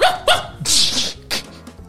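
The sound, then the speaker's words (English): A person mimics a small dog, letting out a few sharp, high-pitched yaps, including one longer, strained bark, with brief pauses between them. “I want small dog.”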